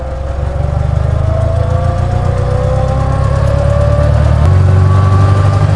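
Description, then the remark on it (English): An old, inexpensive all-purpose family car's engine runs with a loud, steady low rumble, its pitch rising slightly and then holding as it revs gently. No one speaks. “This would have been an all-purpose type family car back in the day.”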